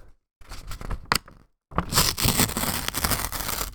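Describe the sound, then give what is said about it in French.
Rice paper made by the company Conigua tears in two pulls: a short, crackly rip, a brief pause, then a longer, louder continuous tear with a dry, fibrous rasp. No voices. “Ah, c'est presque musical comme son. Ça, je pense que c'est un peu la fibre du papier qu'ils utilisent pour le faire.”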